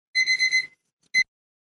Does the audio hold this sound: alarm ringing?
yes